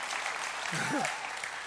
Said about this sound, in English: So, there we go. Appreciate the golf clap. There we go.